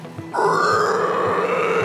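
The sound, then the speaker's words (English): Someone imitates the muffled scream of a game character's weapon, a torso with a stitched-mouth head that screams when its head is pulled: a brief low lead-in, then a loud, strained, sustained cry held steadily for about a second and a half, with no words. “He wields this weird torso with this head with the stitched mouth, and he points it, and he, like, pulls on the back of its head, and it screams through its stitched mouth, creating this strange wave of energy going into the boss.”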